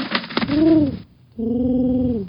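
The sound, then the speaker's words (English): One of Tesla's carrier pigeons, bringing news, coos twice, low and throaty, each call a drawn-out warble; a few quick fluttery rustles come just before the first coo, and nobody speaks. “One of my trusty Tesla pigeons has brought us news of Thomas Edison's foul deeds.”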